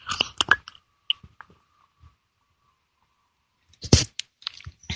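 Wet sipping of hot morning tea just after 8 a.m. in Los Angeles: a quick cluster of slurps, a long quiet stretch, then another short burst of sips and soft mouth sounds. No talking.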